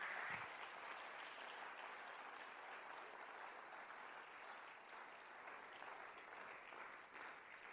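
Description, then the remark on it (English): An audience claps their hands in a steady, dense wash of applause that holds an even level throughout, with no voices standing out over the crowd's clapping. “Will you clap your hands today?”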